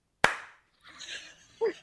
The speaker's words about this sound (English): Okay, I heard it now. Now that I know what I'm listening for. That's good. That's a good sound. Well, I'm glad you got it the second time because it was important on the first one. It takes a while to hear the ass slap, but once you do, you'll never